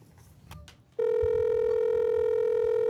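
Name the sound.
telephone dialing tones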